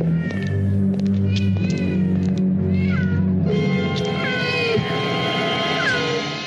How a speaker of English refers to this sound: They walk past the pet shop and the cats all lose their fucking minds. And nobody thinks this is odd. He's like, wow, they must be really hyped up on catnip.